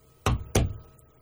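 Two sharp knocks on a door, fairly loud, spaced about a third of a second apart, each with a solid low thud and a brief decay, with no voices.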